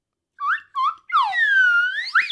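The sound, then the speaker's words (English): A slide whistle gives two quick upward chirps, then a long, bright glide that dips down and swoops back up to a high finish. It plays alone, with no talking. “Here, I'm going to blow the slide whistle.”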